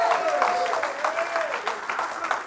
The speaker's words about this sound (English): Come on and give Jesus a clap of amen. Hallelujah.